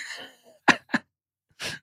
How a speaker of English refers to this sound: Hold on. I'm going to start coughing again because I can't laugh without coughing.